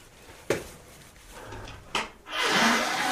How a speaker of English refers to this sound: Oh, I can smell it now. Okay. I blew my nose, and now I can smell. Hey, holy cow. Imagine that. So hopefully that sound wasn't too disgusting.